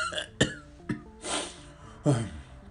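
A run of about four harsh, forceful coughs at irregular intervals, fairly quiet, with short breathy gaps between the bursts and no talking.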